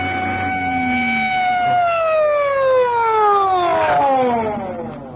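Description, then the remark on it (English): A loud police car siren holds a steady wail, then slowly winds down in pitch over several seconds as police flag a car into the curb, with a low engine rumble underneath. “they're flagging us into the curb.”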